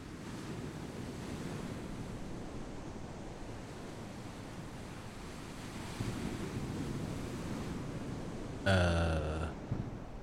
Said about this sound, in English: The ocean's rising. When did it get that high? I think it's rushing in.